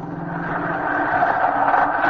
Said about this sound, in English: Ah, the bus.